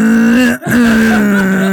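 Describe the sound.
A voice imitates someone snoring loudly upstairs with a low, steady droning moan, split by a quick catch of breath into two long, loud tones.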